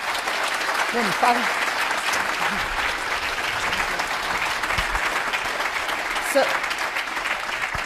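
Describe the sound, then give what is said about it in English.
An audience applauds steadily for about eight seconds at the close of an evening conversation session, a dense, even patter of many hands clapping at a constant, fairly loud level, with a few faint voices mixed in. “Let's give a little round of applause.”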